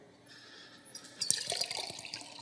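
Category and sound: household object, water being poured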